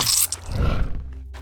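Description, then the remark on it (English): A demon creature's deep, guttural growl rumbles after a brief burst of harsh noise as it is stabbed in the belly with a knife, swelling loudly for a moment and then tapering off into a low fading rasp. “Its growls were soon followed by silence as I brought my blade up, unzipping its guts.”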